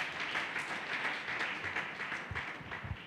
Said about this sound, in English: Shall we all clap our hands for Jesus?